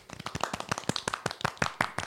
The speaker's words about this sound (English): I think it's let's celebrate the man's life. Yeah. And you know, golf clap to Mr. Von Sydow.